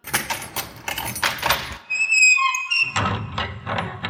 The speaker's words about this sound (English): Just a minute while I open up this door which leads to the dungeons.